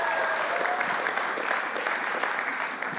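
An audience at Elevate Church claps steadily, giving themselves a round of applause, a dense, sustained wash of many hands at an even loudness for the full three seconds, with no voices standing out.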